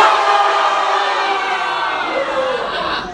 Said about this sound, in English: High schooler, show them how it's done. On the count of three, your fiercest battle cry. Ready? One, two, three.